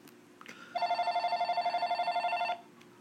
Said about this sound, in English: Oh, my phone wants to ring now.